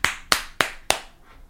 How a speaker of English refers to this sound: That's a good clap. The loud echo. The fast clap.